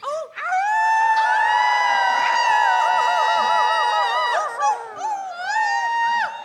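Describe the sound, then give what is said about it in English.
An audience howls together like wolves instead of clapping, many overlapping sustained wavering voices rising and sliding in pitch, loud and continuous for several seconds with a brief dip before a final swell. “If you get tired of clapping, it's really fulfilling to howl like a wolf instead.”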